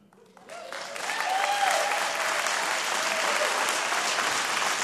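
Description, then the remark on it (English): An audience breaks into applause that swells within the first second and then holds as a steady, dense wash of clapping hands, with a faint voice briefly audible underneath. “Your claps are very nice, but I got like a minute left.”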